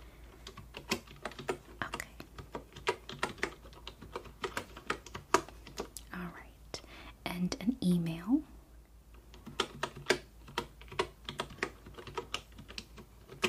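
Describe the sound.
Soft, rapid typing on a computer keyboard during a role-play customer service check-in at an aquarium, in irregular bursts of light clicks, pausing briefly while a quiet, soft-spoken voice says a few words, then the tapping resumes.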